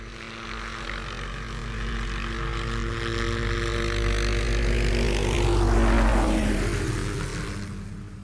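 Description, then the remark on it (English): An FBI helicopter flies in shining bright lights, its steady rotor and engine drone growing louder until it passes overhead, then easing off slightly as it comes in to land. No voices. “Just then, a helicopter flies in and bathes them in bright lights.”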